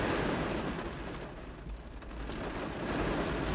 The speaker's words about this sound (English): I go out there now, I'll be soaked. Sounds of nature! Oh my god, it's pouring.